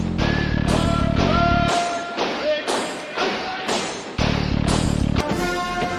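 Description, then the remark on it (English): Heavy, evenly spaced footsteps thud in a steady marching rhythm, loud, layered over sustained musical tones and a deep rumbling bass, from children dancing in front of the Forbidden City in Beijing. “Can hear the footsteps for sure.”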